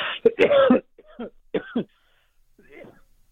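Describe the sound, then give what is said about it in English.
A person with a growing tumor coughs: a loud, harsh cluster of rough coughs, then a few shorter, weaker coughs and throat-clearing sounds separated by brief pauses. “Excuse me, I have a tumor, and the tumor sizes are growing, and so the coughing is a result because of that.”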